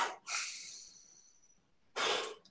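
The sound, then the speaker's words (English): Airy breathing through the nose with no talking: a quick sniff, then a long hissing inhale that slowly fades, a pause, and a short forceful exhale. “He's taught me to breathe through my nose to get the heart rate to drop, to breathe through my nose.”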